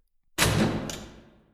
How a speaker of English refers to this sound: Everyone watched in horror as the office door slammed shut.